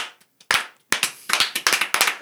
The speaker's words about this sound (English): Okay, can we take a moment for a slow clap? Slow clap? I think it's called a golf clap. But thank you.